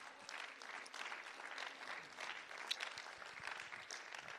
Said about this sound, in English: Well, clap your hands to Jesus.